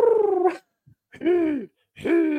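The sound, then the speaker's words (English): A person vocally imitates a pigeon with three drawn-out, warbling hoots, a low throaty coo that wavers like a strained groan, each call separated by brief silence, fairly loud. “You sound like my cat about to hork up a hairball.”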